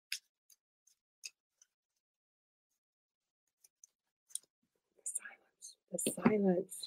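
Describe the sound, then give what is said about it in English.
Soft, sparse card flicks and clicks as a deck of Hidden Worlds oracle cards by Lucy Cavendish is shuffled, quiet and spaced out with long pauses, then a quicker cluster before a hushed voice starts murmuring near the end. “I think I stopped using them because no matter how much I shuffle, the same card kept coming up.”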